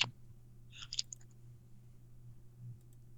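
A quick burst of a few light key clicks on an old typewriter near the start, then quiet with only a steady low hum underneath. Soft, with no talking.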